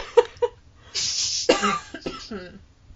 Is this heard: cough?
yes